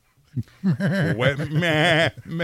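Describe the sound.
Someone imitates a bleating sheep, a few short wavering vocal bursts building into a longer, quavering baa, loud and close with no other sounds around it.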